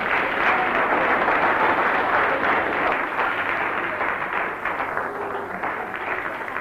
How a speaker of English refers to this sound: Shall we all, before we go any further, everybody in this meeting, let us all give Jesus a clap. Come on.